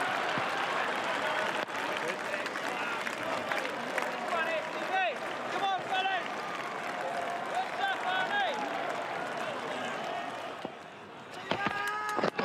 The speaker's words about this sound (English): What a victory. England have pulled it off. The crowd goes ballistic.